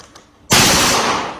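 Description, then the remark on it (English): After a brief hush, a robot dog's mounted gun fires at targets, a sudden loud burst of rapid automatic gunfire that rattles on for about a second, harsh and dense, easing only slightly at the end. No voices. “Who's controlling the trigger?”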